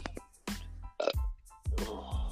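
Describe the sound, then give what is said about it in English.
A stifled burp, held back into a few short, throaty gulps and croaks, with no talking. “I feel really burpy at the minute, and I just want to get it out.”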